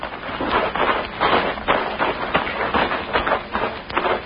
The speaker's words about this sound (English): Easy on those footsteps. Walk along the edge of the grass.